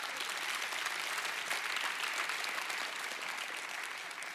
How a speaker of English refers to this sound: And I appreciate the clap. I really do.